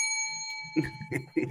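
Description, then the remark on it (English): A bright, metallic bell ding rings with a sustained shimmering tone, struck again about three times in quick succession, fairly loud. “Ring that bell”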